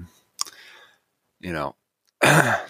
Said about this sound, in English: There's been a little bit of sickness going around the house, so I might sound a little stuffy. There might be a little bit of coughing here and there. I'll try not to cough directly into the mic.